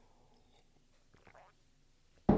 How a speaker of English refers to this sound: Wow. Okay. Let me just grab another sip of water here and let's round out this puppy with the last one.